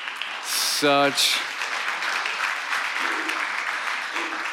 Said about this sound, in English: Did the like delayed applause sign go off because you guys hit it and then it just like waved its way through over this way.